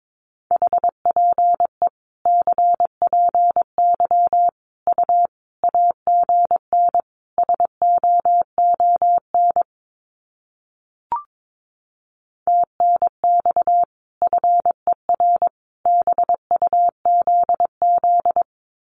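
Morse code practice tones sending common QSO phrases at 22 words per minute: a steady mid-pitched beep keyed rapidly into dots and dashes, sent in quick bursts with short gaps and one longer pause partway through. No voices.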